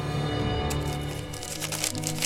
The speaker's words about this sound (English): His eyes lit up as he heard a crinkle of paper. He fished a hand into his tunic, and his fingers closed on a scroll of papyrus.